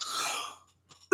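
A single raspy cough bursts out fairly loud, trailing off over about half a second before a brief quiet and a faint click.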